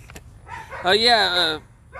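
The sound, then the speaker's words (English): A dog lets out one drawn-out, high-pitched bark, fairly loud, lasting under a second against a quiet background with faint noise before and after. “Well, the dogs are barking.”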